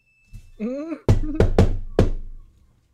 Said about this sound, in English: Knock.